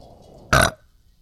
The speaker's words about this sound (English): Oh, that was such a good one. Wait, it's your first burp on video. I know. That was cute.